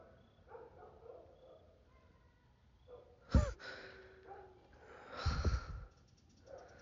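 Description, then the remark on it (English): Dogs bark in two loud, sharp bursts a couple of seconds apart, with quieter whines and yips in the gaps and no talking; the dogs are worked up because of some kids. “these dogs are losing their mind because of these kids.”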